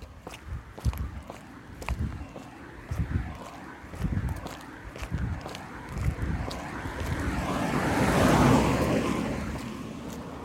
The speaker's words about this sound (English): So, I'm walking this afternoon. It's a Saturday, so probably a lot of cars are going to pass in the park.